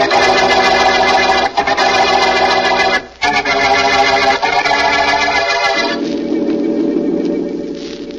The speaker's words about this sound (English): That's the second time that car's passed you, Vance. I know. At midnight, it is a little unusual for a car to circle a block twice.